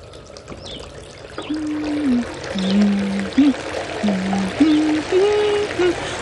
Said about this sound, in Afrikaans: Goed, laat ek lekker lauw warm water intap.